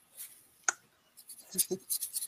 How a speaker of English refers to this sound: I'm just going to cross out one thing real quick.